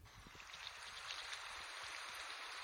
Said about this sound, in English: It sounds like what I go for is rain in parentheses, light, the light rain. Here's what it sounds like.